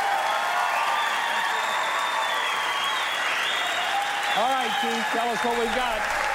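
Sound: audience applause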